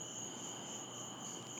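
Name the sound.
crickets chirping outdoors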